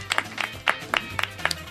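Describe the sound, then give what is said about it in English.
A brief, sparse round of applause: a handful of sharp, uneven handclaps from what sounds like just a few people, moderately loud, lasting under two seconds. “That deserves applause.”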